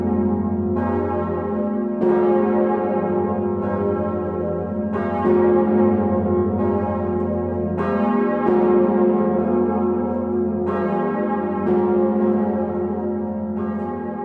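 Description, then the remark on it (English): Two huge bourdon church bells, Emmanuel and Marie, ring together in the South Tower, their heavy strikes overlapping every second or two in a rich, sustained, booming wash of low tones that never fully decays between blows. “And I do in particular love the sound of Marie and Emmanuel, just the two Bordens together, that when they ring side by side, it's a great sound.”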